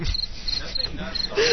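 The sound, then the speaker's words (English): Crickets chirp steadily in short, evenly spaced high-pitched trills, a quiet stretch of night ambience with nothing else going on. “We had to give you the crickets at least is one.”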